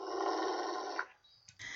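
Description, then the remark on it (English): A large dog, a Rottweiler named Princess, lets out a low, rumbling growl that holds steady for about a second, fades briefly, then resumes menacing with no speech. “So Kevin barely takes 2 feet into the hallway before he's met with the dog from hell. We learn this Rottweiler, her name is Princess.”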